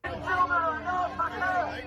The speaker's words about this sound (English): So I can just talk over it? Yeah. Yeah, it might have like some crowd noise, but you okay.